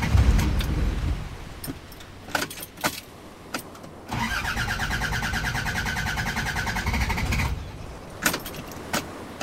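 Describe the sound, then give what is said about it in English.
A few jangles and clicks, then the starter of Fender, the car Dan tries to start, grinds in a steady rhythmic whir for about three seconds and cuts out without the engine catching, leaving quiet clicks afterward. “He jumped into Fender and tried to start the engine.”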